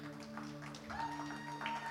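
An audience claps in a soft, steady wash of applause lasting a couple of seconds, over a low constant hum, with a brief higher tone rising out of the crowd partway through.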